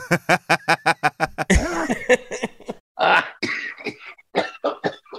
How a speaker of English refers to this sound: He's coughing.